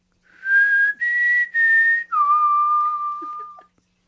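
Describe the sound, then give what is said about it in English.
A clear whistled four-note Mockingjay tune: three short, steady notes at a similar pitch, then a longer, lower note that slowly fades out. No talking. “Continue your beautiful Mockingjay song.”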